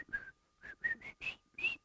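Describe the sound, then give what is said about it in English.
A person whistles a short, breathy hiking tune of the kind whistled on a camping trip: five or six distinct notes with brief gaps between them, climbing in pitch toward the end. “So when you're a kid going on a camping trip, you know, one thing we whistle.”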